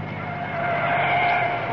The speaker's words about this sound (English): Oh, there's a car coming. I see headlights. Let's stand at the wayside of the road.